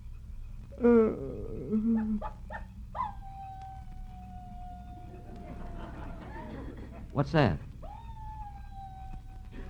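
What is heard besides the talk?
coyote howling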